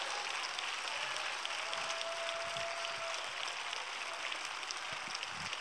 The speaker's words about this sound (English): Now give him a hand clap of praise.